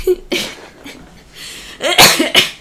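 A close, loud coughing fit: a harsh burst, a brief pause, then a quick cluster of raspy coughs near the end, with no talking.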